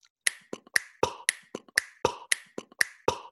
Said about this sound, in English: And I said, well, for starters, the organic nature of your human voice telling jokes might go well with the organic nature of my human mouth, lips, tongue, finger snaps, noises that a human can make, like this.